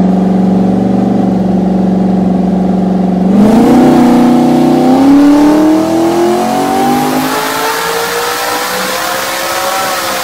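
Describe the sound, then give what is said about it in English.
The loud engine of a modified Mustang test car, the Grey Goose 6R test mule with a new combo and OEM computer, idles with a steady low rumble, then revs up sharply around three seconds in, its pitch climbing smoothly and holding a strong, raspy drone. No one speaks. “So it says here, the Grey Goose 6R test mule, new combo is ready for the track. Details to come later. In later posts. Enjoy the sounds of freedom for now.”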